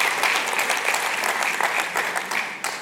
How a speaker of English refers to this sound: Let's give a round of applause for the volunteers.